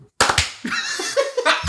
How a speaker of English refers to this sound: Big clap real quick just so we can sync up all the mics.